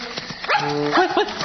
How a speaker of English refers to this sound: A dog, a farm dog.